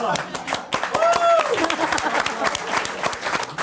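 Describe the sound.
A studio audience breaks into steady, dense applause lasting a few seconds, with a short rising whistle or whoop cutting through near the start and crowd voices mixed in.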